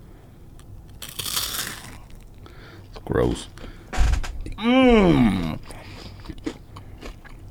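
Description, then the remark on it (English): Crunchy bites into a brittle honeycomb candy bar from Canada and England, a few sharp crackling crunches in quick succession, followed by a voice reacting with short remarks and an appreciative hum. “I'm about to bite this. I want you to listen to this crunch. This is honeycomb.”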